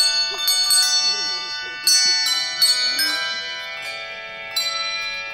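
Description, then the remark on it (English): Bell ringers' bells ring out at the annual December Christmas tree ceremony at the General Grant tree, in a series of overlapping strikes, each leaving a bright, sustained shimmer of tones, while a faint murmur of voices sits low in the background. “A video captured the festive event with bell ringers, carolers, and a flag and memorial wreath laying ceremony.”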